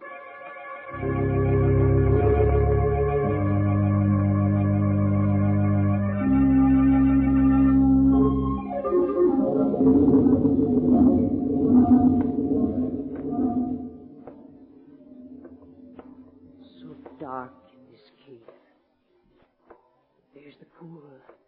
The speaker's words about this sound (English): Bubbling pool.